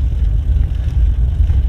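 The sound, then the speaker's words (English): A car approaches on an otherwise quiet road among trees, its low, steady engine rumble holding at a fairly even level throughout, with no voices present. “Just me and the trees. And the car about to come.”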